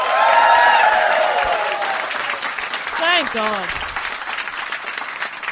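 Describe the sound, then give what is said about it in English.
An audience at a live show applauds loudly to show they have heard the show before, with dense, steady clapping that slowly tapers off, and a voice briefly speaks over the fading applause. “Now, there's always a few people that have never heard the show, but first of all, we start with, give me a round of applause if you have heard Do Go On before.”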